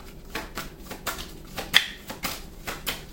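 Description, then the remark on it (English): A deck of tarot cards being shuffled, a steady series of crisp, papery slaps and riffles roughly every third of a second, with one sharper snap midway and no voices. “The star was at the bottom of the deck before I started shuffling.”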